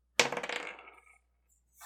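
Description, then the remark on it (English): A small bone die, a d12, clatters onto a tabletop: a sharp initial hit followed by about a second of rapid rattling bounces that fade out. It is fairly loud, with no voices. “Back to 1d12. The bone dice.”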